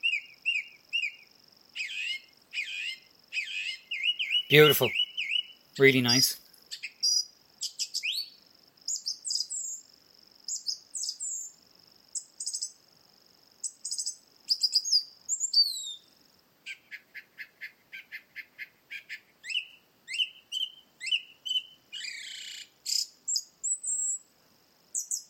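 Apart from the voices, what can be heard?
song thrush singing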